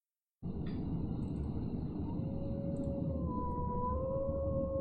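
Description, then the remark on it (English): Long, drawn-out wolf howls rise and hold, two overlapping voices sustained over a steady rushing ambient background, with no one speaking. “Oh, wolf howls.”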